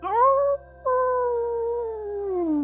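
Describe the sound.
A person howls like a wolf during a ceremony with people standing around a fire, a loud, sustained cry that rises, breaks briefly, then resumes and slowly slides downward in pitch.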